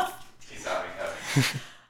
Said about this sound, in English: See, listen, we had a perfect run and then yeah. the dog started barking.